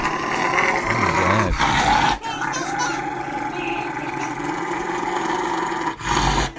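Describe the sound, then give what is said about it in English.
A dog growls loudly during a nail trim, almost without pause, a rough, rumbling snarl that swells into sharper, harsher bursts near the start and again near the end. “Please tell me that dog does not bite his owner.”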